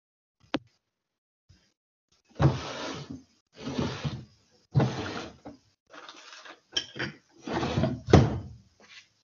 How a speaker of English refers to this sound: So I just had to fiddle with my drawers there for a minute.